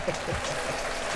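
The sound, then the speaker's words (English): A brief round of applause, a dense, even patter of clapping that holds steady for about a second at a modest volume, with a low murmur of voice underneath. “I gotta give myself a round of applause for that one.”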